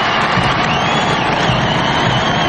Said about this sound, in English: Tens of thousands of well-wishers cheering on the newly crowned King of Great Britain, Charles III, and his Queen Camilla. The royal family making the traditional appearance on the balcony of Buckingham Palace following today's coronation